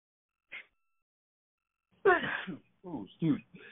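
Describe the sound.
A single sudden sneeze bursts out, followed by a couple of brief voiced sounds, with a faint short noise just before it and quiet otherwise.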